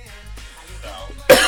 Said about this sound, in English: Hopefully you get rid of that cough. I'm going on 5 weeks now of this cough. I don't feel sick anymore. I'm still coughing. And it just won't go away.